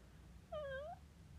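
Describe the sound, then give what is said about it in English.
A person imitates a cat's meow with a single short, clear, slightly falling-then-rising mew, moderately loud, with no other talk during it. “I don't know why I made like a cat noise”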